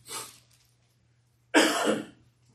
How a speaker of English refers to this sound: I only cough when I sing. I don't cough when I don't sing, but I enjoy the song so much I don't want to quit singing, so I'll just put up with my coughing